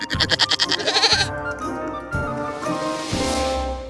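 A goat bleats loudly and close by, a quavering, rapidly wavering cry that stretches into a drawn-out nasal bleat lasting several seconds, with no other sounds around it.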